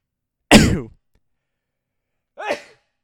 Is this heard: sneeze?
yes